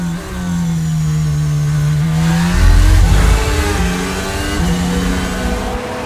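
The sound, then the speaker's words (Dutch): A loud, high-revving race car engine, Checo Perez's car as it passes George Russell, holds a steady whine, then briefly lifts off the throttle with a rumbling dip in pitch before picking back up. No one speaks. “Je hoort zelfs dat Perez moet liften.”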